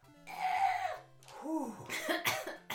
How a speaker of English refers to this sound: Do you have a coughing fit? Because that was so It was stressful.